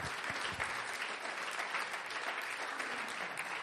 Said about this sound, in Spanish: Démosle un fuerte aplauso a nuestro Dios.